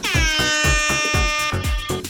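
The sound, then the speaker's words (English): A loud, sustained air horn blares for about two seconds, its brassy tone steady and bright, with a steady thumping beat pulsing underneath. “This episode was brought to you in part by Air Horns.”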